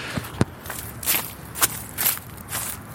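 Dry leaves crunch underfoot in a steady walking rhythm, about six crisp, bright crackling steps over three seconds, with no talking.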